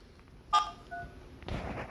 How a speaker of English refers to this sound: Are you calling her in the middle of the podcast?